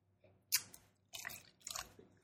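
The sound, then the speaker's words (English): Water pours into a glass in three short splashy bursts, the first starting sharply, the later two longer and bubbling, fairly quiet, with no talking. “Can you water me?”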